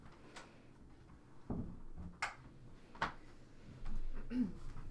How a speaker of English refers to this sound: Sorry, the cat just left, so I had to go close the door again.